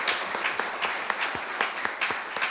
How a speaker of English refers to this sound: If we could please welcome these 3 scholars with a round of applause.